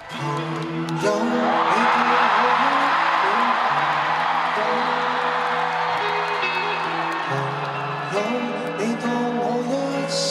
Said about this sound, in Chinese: 音乐一响，粉丝嘅欢呼声震裂红馆啊！